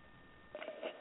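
A few quick telephone keypad tones beep in rapid succession after a brief quiet stretch as a phone number is dialed to place a call, thin and phone-like, with no one talking.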